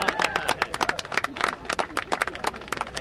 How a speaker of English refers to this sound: It's not a new dump truck they're cheering. It's taller and shinier than that. It's a brand new silver silo filled with 21 tons of corn sticking two stories up into the clear, cold sky.